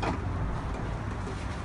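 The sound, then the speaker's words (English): A coin-operated raw milk vending machine running as it vends one litre of milk, giving off a steady low hum with a broad whirring hiss over it, unbroken at an even level throughout, with no one speaking. “Should start vending. This is a raw milk vending machine.”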